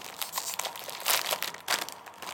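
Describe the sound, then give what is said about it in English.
A crinkly bag of Cheetos Cheddar Jalapeno Crunchy cheese puffs rustles and crackles in irregular bursts, with a couple of louder crumpling swells partway through, and no voices. “So this is the Cheetos Cheddar Jalapeno Crunchy.”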